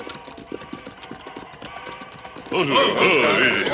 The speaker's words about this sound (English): That's a train whistle, Sheriff. From the way it's being blown, there must be something wrong.